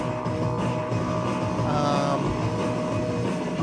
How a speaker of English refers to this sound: Well, yeah, Matt refills the Brita.